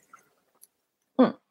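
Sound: sipping water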